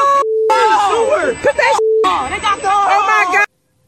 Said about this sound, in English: You know, if you're Apple, you got to ask yourself, and they can't stop the alarms from going off.